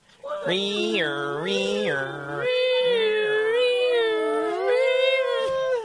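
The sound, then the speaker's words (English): Several voices loudly imitate an ambulance siren, a sustained wailing hum that steps up and down between two pitches in a steady nee-naw pattern for several seconds. “Now it could be the sound of an ambulance.”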